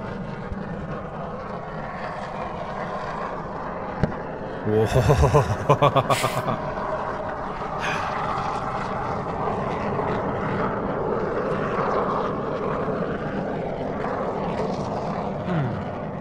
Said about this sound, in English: All right, what do you think? Is that a volcano or is that an aeroplane? Is there any type of airplane specifically it could be? Could it be like a jet or a commercial airliner or? It is a human-made craft that flies through the air.